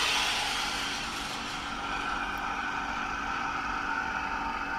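A cryostat's vacuum pump, just switched on to suck the air out of the Dewar chamber, runs with a steady, even mechanical drone, a broad hiss layered with faint whining tones, holding a constant loudness throughout with no voices.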